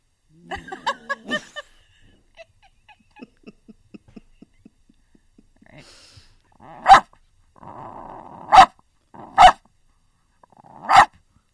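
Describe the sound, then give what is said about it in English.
A person imitates a barking dog, starting with a quick run of yips and soft huffs, then four loud, sharp barks with a growly stretch between them. “You speak New York dog.”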